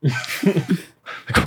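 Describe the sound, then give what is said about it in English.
A voice imitates panting: a quick run of short, voiced, gasping breaths, a brief pause, then a couple of louder, breathier huffs, fairly loud. “And I'm panting.”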